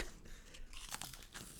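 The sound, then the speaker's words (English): Someone chews a crunchy corn snack, with a steady run of crisp, crackling crunches over a couple of seconds and no talking. “You just take a bite and then call it quit.”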